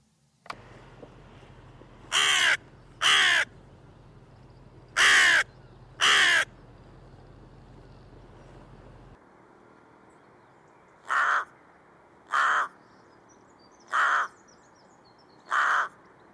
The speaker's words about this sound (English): So what you heard there were four calls from a carrion crow and then four calls from a rook shortly after. And yes, of course, they sound the same. They're very broadband, i.e. they cover a wide range of frequencies